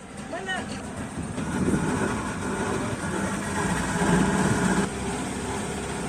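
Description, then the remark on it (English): A small boat motor drones steadily throughout as locals travel by boat on floodwater over submerged roads in Kisumu, loud, with a rough, buzzing engine tone; a brief voice is heard faintly near the start. “With roads now submerged in water, locals have to use boats where once motor vehicles and bicycles were the norm.”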